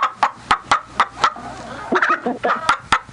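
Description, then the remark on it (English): Chickens cluck in a quick, steady series of sharp calls, fairly loud, with a busier flurry of overlapping clucks partway through and no talking. “And there's more chickens in the studio audience right now.”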